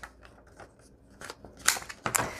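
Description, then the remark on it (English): Scissors snip around the edges of paper printed with owl images, rounding them: a string of short crisp cuts with papery rustling, building to a few louder, sharper snips toward the end; no voices. “All right, let's round the owls.”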